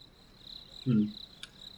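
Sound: crickets chirping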